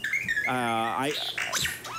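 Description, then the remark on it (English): A small pet bird imitates the robotic beeps and whistles of R2-D2: a quick run of warbling electronic-sounding tones, rising and falling sweeps and chirps, fairly loud, with no talking. “So it's some sort of a bird that is imitating R2-D2. That's actually what this is.”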